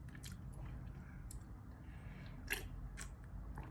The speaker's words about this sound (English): I'm sipping on orange juice, and I don't think I shook the bottle. I shake the bottle? Damn.